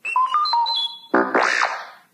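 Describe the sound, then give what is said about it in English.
R2-D2, the Star Wars robot droid, chirps a quick run of electronic beeps and whistles, then a louder buzzy warble that sweeps up and down, clear with no one talking. The beeps are the page-turn cue in the Star Wars Colors and Shapes read-along book. “You will notice time to turn the page when you hear R2-D2 beep like this.”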